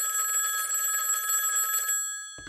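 The electronic ringing tone of an outgoing phone call sounds steadily for about two seconds, bright and fairly loud, then cuts off abruptly as a brief click and a faint voice begin.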